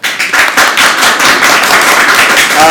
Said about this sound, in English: By applause, how many of you are rooting for Jesuit?